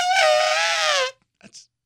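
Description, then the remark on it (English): A person imitates an elephant into a microphone with one loud, sustained trumpeting blast, harmonic-rich and slightly wavering in pitch, lasting about a second, then a few faint breathy sounds afterward. “can I try my elephant in this mic here?”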